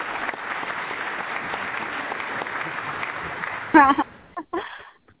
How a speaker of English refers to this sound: Let's give ourselves a little bit of a clap here and bring her on here.